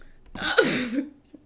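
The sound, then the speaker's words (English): Someone takes a quick drink of water and follows it with one breathy, voiced sigh of relief that rises and then trails off. No one speaks. “Anyways, that's water that I'm drinking.”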